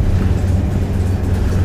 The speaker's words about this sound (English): They be driving, look at her, driving like a bat out of hell. And then they stop on brakes.